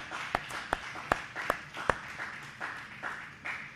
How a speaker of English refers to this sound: Oh, why don't somebody give the Lord a hand clap of praise for His goodness.